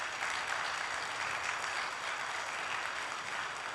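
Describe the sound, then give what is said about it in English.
Steady applause from a church audience for the band and choir, a dense, continuous patter of many hands clapping at an even level for the whole stretch, with no voices over it. “Let's have another round of applause for our band and our choir today.”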